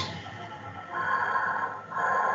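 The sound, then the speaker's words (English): Heavy, rasping Darth Vader-style respirator breathing by a character in a film scene set in a bodega in Manhattan, New York: a long hissing inhale followed by a second mechanical-sounding breath, steady over a faint low background with no talking. “He's doing Darth Vader breathing.”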